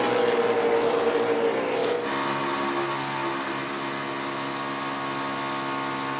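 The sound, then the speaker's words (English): Stock cars roar down the back straightaway on the final lap, with a big run from the number 4 car: a loud, continuous engine drone whose pitch drops sharply partway through as the pack passes, then holds a steady, slightly lower whine. “Big run coming from the four car. Kevin Harvick down the back straightaway.”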